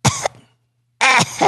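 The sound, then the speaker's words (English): A voice imitates a woman's strained, painful cough that burns: two rough harsh bursts separated by a brief silence, fairly loud, the second burst longer and more groaning. “She, it burns to cough.”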